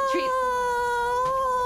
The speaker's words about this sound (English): I'm really sorry my cat is shouting and she's bought me her favorite toy as a like offering in exchange for affection.